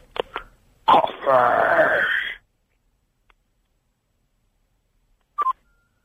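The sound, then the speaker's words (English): A few handling clicks and a harsh, moaning burst of noise over a thin telephone line from a radio phone-in caller, then silence before a short keypad beep near the end as the phone is put down. “There we go. Finally put the phone down.”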